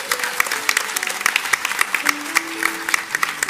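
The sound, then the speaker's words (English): A church audience applauds steadily for performers, including children playing shepherds and a little star, many hands clapping in a dense, continuous patter with sharp individual claps standing out throughout, while faint voices murmur underneath. “Another round of applause for them, please.”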